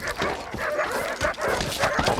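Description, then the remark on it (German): Several dogs bark and whimper excitedly as they are hurried into a car, a busy overlapping clamor of yips, bow-wows and whines that continues without pause throughout. “Los, rein mit den Hunden, schnell.”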